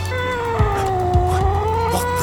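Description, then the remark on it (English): A cat in a bag lets out a long, drawn-out wailing meow that bends down and back up in pitch, fairly loud, with a low steady hum and a few soft thumps underneath. “What's in the bag, General? Nothing, Your Majesty. Just a cat.”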